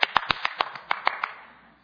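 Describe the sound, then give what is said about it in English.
A brief burst of hand clapping, about nine crisp, sharp claps in a quick, slightly uneven rhythm, stopping after roughly a second with a faint tail. No voices. “Why are you clapping?”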